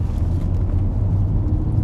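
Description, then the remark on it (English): A car engine idles in bumper-to-bumper traffic in Boston on a cloudy day, a steady low hum and rumble that holds at an even level throughout, with no voices. “But for today, on this cloudy day in Boston, sitting in bumper to bumper traffic out here, you know, just trying to enjoy this amazing, blessed Tuesday, you know?”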